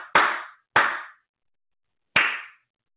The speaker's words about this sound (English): I'm going to do a little clapping clearing there. This is meant for the gut, the solar plexus, the trunk.